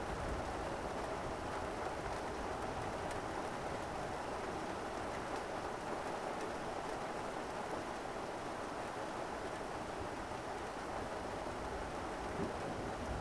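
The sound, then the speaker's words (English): Heavy rain pours steadily onto the thatched roof of a hut in a storm, a dense, even hiss of countless heavy drops that never lets up, with no voices. “The power of the storm blurs everything outside and makes you retreat from the covered deck into your room.”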